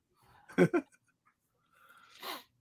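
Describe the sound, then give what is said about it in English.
A dog snorts twice in quick bursts, then gives a longer breathy huff like panting, all fairly quiet with no talking. “My dog wants to say hi.”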